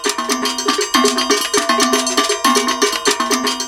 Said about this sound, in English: well, I started with caca first, but when I reached a certain level with caca, there was gangbo, which is played with bells, just bells.